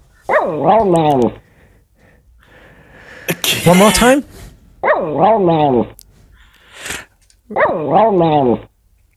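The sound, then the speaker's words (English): Loud dog vocalizing in four drawn-out, warbling bursts with a rising and falling pitch that mimics the rhythm of human speech. A person speaks briefly between the bursts. “It's a dog doing an impression of me.”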